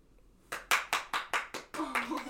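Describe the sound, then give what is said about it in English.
Steady, rhythmic applause from a live studio audience: about eight sharp, evenly spaced claps in quick succession after a short quiet start, with a brief voice joining in toward the end. “Applause from the live studio audience.”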